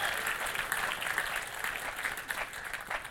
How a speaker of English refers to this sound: And thank you to all of you. Round of applause for yourself. Thanks for joining in.